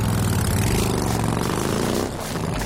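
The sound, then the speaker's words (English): A stolen motorcycle's engine revs loudly, its throaty drone holding steady before the pitch shifts and the sound eases slightly as the bike pulls away. “Valkyll would not find out until later that night exactly whose motorcycle he had stolen.”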